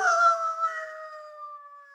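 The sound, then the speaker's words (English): A single long howl from Jacko, a three-quarter Irish setter, in Manchester Village, Vermont: a loud, steady tonal wail that sags slightly in pitch as it fades, heard alone for about two seconds. “Jacko, the three-quarter Irish setter. A good dog, usually a well-behaved dog, friend to the children of Manchester Village, Vermont.”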